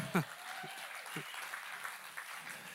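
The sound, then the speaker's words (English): A crowd of people clapping steadily throughout, a soft, dense patter, with a few short vocal calls breaking through near the start. “It's just like, amen, you can clap it for that if you like.”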